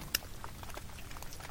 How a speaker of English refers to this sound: The faint crackle and pop of melting ice drifts through the speakers.